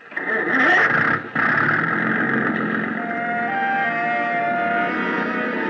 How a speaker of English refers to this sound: Big gas engine took over where the wind dropped us, and Captain Granger stood at his wheel, outfencing the submerged swords of coral with the slim prow of the kittiwake.